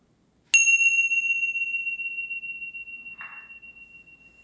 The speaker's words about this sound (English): And then listening for the bell to close your practice and open your eyes.